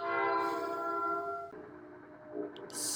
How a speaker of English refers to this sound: oh, there goes the train.